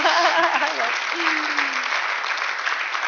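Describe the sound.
An audience claps steadily in a dense, even wash of applause lasting throughout. A voice speaks briefly over the clapping at the start, then the applause carries on alone.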